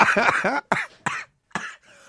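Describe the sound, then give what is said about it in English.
A loud fit of coughing: a long raspy hack followed by three sharp, quick coughs, trailing off into a faint wheezy breath at the end. “I've got a cough.”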